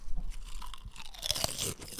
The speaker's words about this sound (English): Chips? I'm eating. I don't want you eating chips. Crunching into the mic. No chips. Just last bite, last bite.